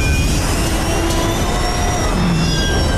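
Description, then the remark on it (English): A fighter jet engine roars continuously and loudly, a dense, rumbling wall of sound with a faint whining tone threaded through it, no voices. “And he's like hugging the bottom side of a jet.”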